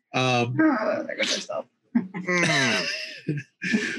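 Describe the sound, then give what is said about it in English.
A voice imitates the rusty hinges of a door being pushed open, screeching in several loud, strained, creaking bursts whose pitch bends up and down, separated by brief pauses, echoing in a cramped room. “As you push it, it groans and screeches loudly because the hinges are, of course, rusted.”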